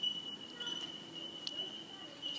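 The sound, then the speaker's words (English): Faint, high, bell-like calls of a bell miner bird ring out repeatedly in a steady pattern over a low, murmuring background, with no voices. “The Bell Minor. The Bell Minor.”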